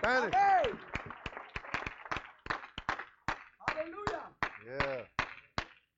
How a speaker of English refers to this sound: ¿Pueden tomar su lugar si le dan un aplauso fuerte, Señor? You may be seated if you clap your hands to the Lord.